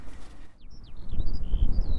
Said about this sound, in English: Skylarks are singing in the fields behind the cliffs. You can probably hear that it's still windy, but it's nowhere near as blustery as the previous two walking days.